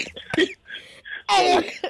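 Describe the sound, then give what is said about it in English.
A few rough coughs, a short sharp one followed by a longer, louder hacking burst and a brief final cough, with no talking. “When you day for phone, cough, they kill me.”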